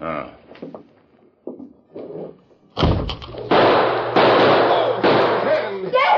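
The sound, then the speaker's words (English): After a few seconds of quiet, indistinct voices, a burst of loud gunshots rings out in a shootout, three or four sharp blasts in quick succession, each trailing into a harsh, noisy echo. “My bullet just knocked down your gun.”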